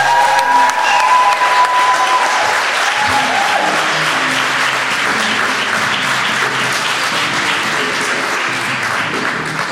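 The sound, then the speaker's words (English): Sustained audience applause at the Theatre Royal welcoming JB Barrington, a dense wash of many hands clapping at a steady loud level for about ten seconds, with a few faint cheers and whistles mixed in near the start. “Ladies and gentlemen, please give it up for JB Barrington!”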